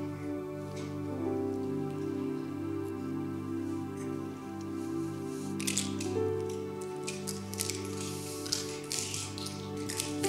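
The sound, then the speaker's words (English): Plastic cups crackle and snap as people break them after eating and drinking together, a flurry of sharp, irregular clicks building in the second half over steady, sustained music playing throughout. “Once again, the crackling sound of breaking plastic cups began about 10 years ago.”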